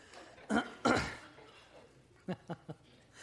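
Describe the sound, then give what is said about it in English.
Someone clears their throat after singing a song: two heavy, raspy bursts, then a pause and three quicker, softer throat-clearing rasps in a row, with no talking. “I'm sorry, I think I blew a gasket on that one song, so got to clear my throat here a little bit.”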